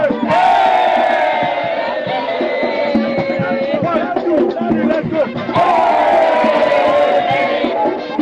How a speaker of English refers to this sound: So you can hear the loud cheers out there. These are patrons of the 2023 edition of the Heritage Caravan enjoying themselves to the fullest.